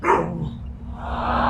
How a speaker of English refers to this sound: Sorry about that. Dog barking. She getting all uppity.